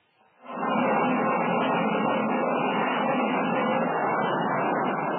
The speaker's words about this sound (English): A transoceanic airplane prepares to land on an East African airfield.